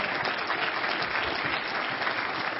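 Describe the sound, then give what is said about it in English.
An audience breaks into steady applause for the Lord, many hands clapping at once in a dense, continuous patter at an even level throughout. “Somebody ought to applaud the Lord.”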